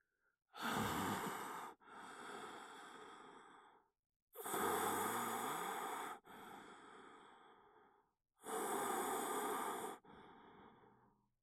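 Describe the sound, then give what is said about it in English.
Three slow, heavy breaths, each a loud rasping inhale followed by a softer, drawn-out exhale, steady with brief pauses between, no voices. “He begins to hear rasping, heavy breathing.”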